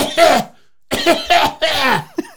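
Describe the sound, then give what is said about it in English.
A person mimics a short, nervous cough, an 'iPad kid cough' that overstimulated kids make, repeating it in a quick run of four or so voiced, throaty bursts with brief gaps between them, fairly loud. “My coworker said to me that there's a thing called iPad kid cough. What? That's a new thing now. It's like when they get a little too overstimulated, they'll just go.”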